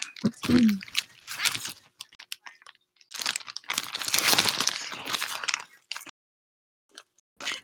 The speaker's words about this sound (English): Todd, are you shuffling your notes?